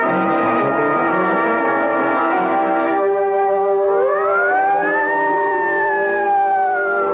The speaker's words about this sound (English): Then the sirens howl because a man is dead, and their cry tears a path through the wilderness of the city.